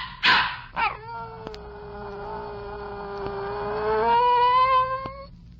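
A dog gives two quick, sharp barks, then breaks into a long, drawn-out howl that slowly rises in pitch, loud, with no one talking.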